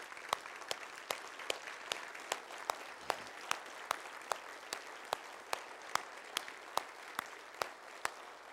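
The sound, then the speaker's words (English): A church audience applauds steadily for several seconds in appreciation of a departing staff member's service: a dense wash of clapping with a few sharp, regular claps standing out above it at a fairly even beat. No one speaks. “I want you to join with me right now as we give Dave a big round of applause for his service here.”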